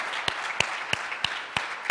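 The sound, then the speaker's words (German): A church audience applauds in a dense, steady wash of clapping, with sharper, louder claps landing in an even rhythm about three times a second. No one speaks. “Können wir Gott dafür einen Applaus geben?”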